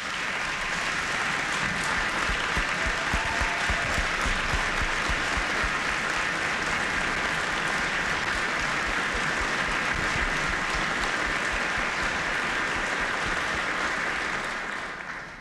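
A large audience applauds steadily for about fifteen seconds for a mother recognized in a speech, a dense, even wash of clapping that holds at full strength before tapering off slightly at the end.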